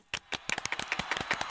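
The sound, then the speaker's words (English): A quick, uneven burst of hand clapping, about a dozen sharp claps in under two seconds, fairly soft, with no talking. “Can I clap? Can I clap? You can clap.”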